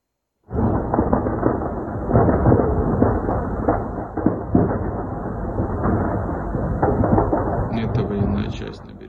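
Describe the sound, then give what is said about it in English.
Heavy explosions in and around Kiev, Ukraine, rumble in a continuous, loud low roar, with a few sharper booms standing out over the steady thunderous din for about nine seconds. “A series of loud explosions are being seen and heard in and around Kiev”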